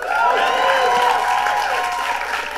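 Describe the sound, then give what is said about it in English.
An audience applauds for the Inflation Reduction Act, a dense wash of clapping mixed with cheering voices and whoops, holding at a loud, even level throughout without fading. “No, it's absolutely great to be in a room that applauds for the Inflation Reduction Act.”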